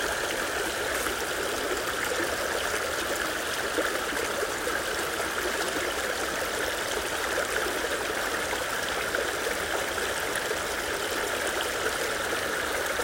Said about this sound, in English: The leaves are falling into the water, floating down the creek.